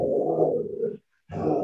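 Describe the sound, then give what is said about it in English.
A female dog at home, missing her owner who works from home, vocalizes in two drawn-out, low grumbling moans, the first lasting about a second, then a short silence before the second begins, fairly loud with no talking. “So your dog is missing you.”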